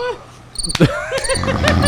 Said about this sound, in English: Like oh, crickets.